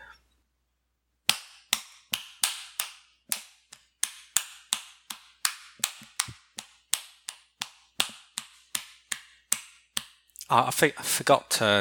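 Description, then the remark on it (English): Sharp hand claps repeat at a steady, slightly uneven pace, around two dozen of them, before a voice starts talking at the very end. “I don't care like what situation you're in, like just stop and just clap for a minute.”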